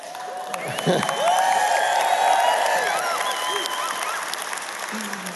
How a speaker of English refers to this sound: Well, good morning. I like that little bit of applause with a good morning. That's great.